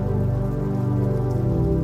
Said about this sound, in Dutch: En terwijl je hier comfortabel in je bed ligt, word jij je bewust van het geluid van regen, tikkend tegen je raam.